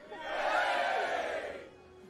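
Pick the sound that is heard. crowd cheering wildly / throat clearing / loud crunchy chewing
crowd cheering wildly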